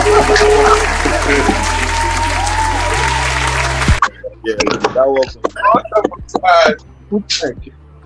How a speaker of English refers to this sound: The World Cup was just like, first of all, man, let's just give ourselves a round of applause for that World Cup.